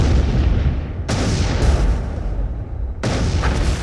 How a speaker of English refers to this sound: Explosion scenes directed by Michael Bay.